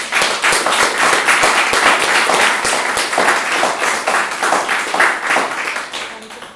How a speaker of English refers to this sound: Thank you very much to the panel and to our hosts. Will you join me in giving them a round of applause?